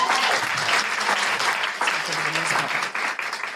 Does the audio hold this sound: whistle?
no